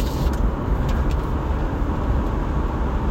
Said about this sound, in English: So, sounds like it's my car.